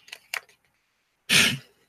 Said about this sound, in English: What is this piece of paper in here in these old shorts that I'm wearing? God, I haven't worn these shorts in many years.